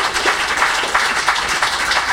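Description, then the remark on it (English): A crowd gives a round of applause for the secretary in the second row, many hands clapping steadily in a dense, crackling wash with small surges in loudness and no voices over it. “Big round of applause for our secretary in the second row.”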